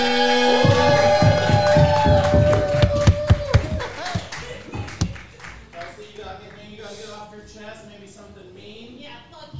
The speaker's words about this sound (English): And our competitor this evening, big round of applause